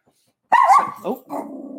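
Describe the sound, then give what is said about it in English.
A dog named Rocky lets out a loud bark followed by a couple of shorter, lower woofs and a brief growly tail, after about half a second of silence. “Shh, Rocky, relax.”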